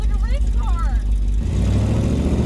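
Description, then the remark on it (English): A fifth-generation Camaro ZL1 engine with headers rumbles loudly, a deep steady idle that turns rougher and choppier partway through, with faint warbling tones early on. “This is ZL1, fifth generation ZL1 with headers.”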